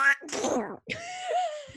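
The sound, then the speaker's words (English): A voice imitates Donald Duck sneezing: a short voiced wind-up, a loud breathy burst, a brief pause, then a raspy, nasal, quacking trail lasting about a second. “Do Donald Duck sneezing.”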